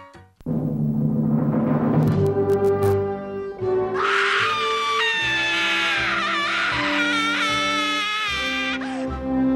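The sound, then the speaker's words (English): A woman lets out a long, loud, high-pitched scream lasting several seconds, wavering as it goes, using her two minutes at a school board meeting, with Pomp and Circumstance playing as a steady tonal backing underneath. “It's the crazy girl who uses her 2 minutes during a school board meeting to scream during pomp and circumstance, right?”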